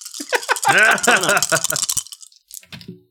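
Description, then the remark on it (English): Dice rattle and clatter in quick, clicking bursts for a few seconds, fairly loud, with a voice vocalizing underneath, then a final small knock as they settle: a roll for a fine arts skill in a game, landing on a 3. “Roll your goddamn dice.”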